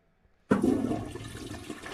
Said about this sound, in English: What are you flushing down your toilet? What am I flushing down my toilet?